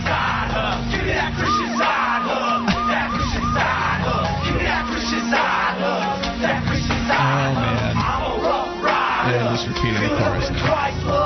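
A dense, loud crowd cheers and yells continuously, many voices whooping and shouting over one another in a steady roar that never lets up.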